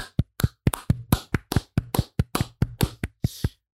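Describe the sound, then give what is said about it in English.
A quick run of hand clapping marking the end of a bracket that crowned Fantasyland the best Disneyland land, about fourteen sharp, crisp claps at a steady brisk pace, fairly loud and alone with no voices, ending after a few seconds. “And as we do at the end of every bracket, we are going to clap it out.”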